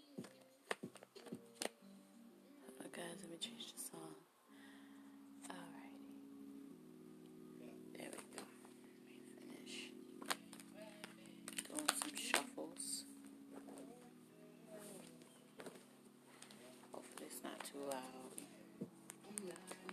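Playing cards being shuffled, with repeated crisp riffles, flicks and taps scattered throughout, over a soft, steady humming tone in the background.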